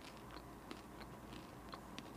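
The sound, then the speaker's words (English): Soft crunching as someone bites into and chews a fresh crunchy snack bar containing quinoa, with a handful of crisp crackles spread irregularly over a couple of seconds and no talking. “Oh, do you hear that crunch?”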